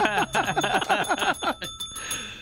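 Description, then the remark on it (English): A bicycle bell rings loudly in a fast, rattling trill of about a dozen strikes, then stops and leaves a brief shimmering ring that fades out. “I just want to ring the bell about that one.”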